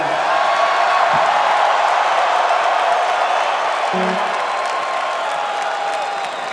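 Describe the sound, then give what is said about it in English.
A large concert crowd in Grand Rapids cheers and applauds in a dense, continuous roar that holds loud and steady throughout, with scattered whoops and whistles rising out of the noise. “So let's hear the crowd and really get the picture of what was going on this night.”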